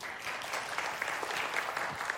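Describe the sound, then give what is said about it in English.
An audience claps steadily on cue after being asked to clap if they found a rubber-ball activity fun, many overlapping hand claps forming a dense, even patter with a few sharper individual claps poking through, no voices. “Clap if you thought it was fun.”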